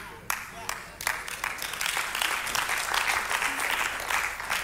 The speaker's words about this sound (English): You shouldn't have clapped yet because I'm going to dig a little bit deeper here.